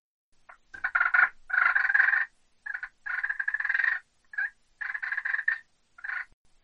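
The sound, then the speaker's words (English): A turkey purr imitated on a game call: soft, rolling, fluttery trills in a series of short and longer bursts with brief pauses, fairly loud, with no talking. “And you know, a purr that a turkey may do would be something like this.”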